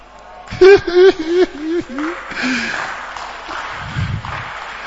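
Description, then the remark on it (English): A man's raised voice gives way to a steady wash of audience clapping that fills the rest of the moment, moderately loud and dense, with scattered crowd voices mixed in. “Are you clapping for me or you're clapping for God?”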